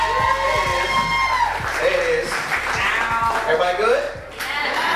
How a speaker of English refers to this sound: So ladies and gentlemen, give me a big round of applause for Jason Weems.